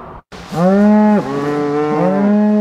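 Cattle moo loudly during a roundup at Bishop Meadows Ranch south of 100 Mile House, with a wildfire almost surrounding the property: a long drawn-out low call followed by overlapping bellows from more animals, sustained for a couple of seconds over a faint outdoor background.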